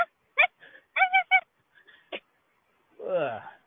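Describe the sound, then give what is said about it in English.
A dog named Margaret gives a string of short, sharp barks in quick bursts with brief pauses, ending in a longer, drawn-out whining bark; fairly clear, with no talking. “Margaret's barking in the background.”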